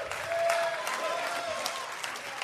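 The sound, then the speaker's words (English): A crowd applauds steadily throughout, a dense wash of many hands clapping at once, with faint cheering or voices mixed in beneath the claps. “You can't write and clap.”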